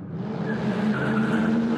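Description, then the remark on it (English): A black taxi's engine revs steadily as it pulls off from beside a telephone box, a sustained droning hum with a higher whine riding above it, loud and continuous throughout with no voices. “Climbing in, you notice that the front of the taxi is obscured from your view, and as the door clicks up behind you, it locks, and the taxi pulls off.”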